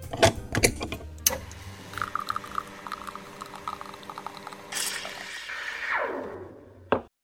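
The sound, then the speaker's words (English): An espresso machine brewing: a few sharp mechanical clicks, then a steady buzzing pump hum, a rush of hissing steam that fades away, and one final click. No one speaks. “And now, let me warm up the espresso machine to brew up another leadership espresso shot.”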